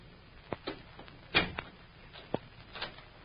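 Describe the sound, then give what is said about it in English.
A door is pushed shut and locked, locking someone in the room, a handful of sharp clicks and thumps from the latch and bolt spaced unevenly over a few seconds. “Hey, what do you mean by locking the door?”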